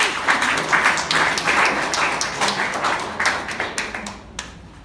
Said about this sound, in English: Hope you all enjoyed all the sessions, right? All the speeches, TT speeches and the evaluations, right? Let us give a big round of applause to them.